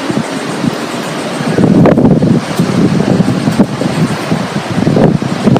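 Steady, loud wind buffeting the microphone over a continuous roar of ocean surf, with rumbling low-end gusts and washing waves throughout and no voices.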